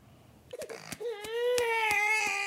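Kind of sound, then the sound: human body sound, newborn baby crying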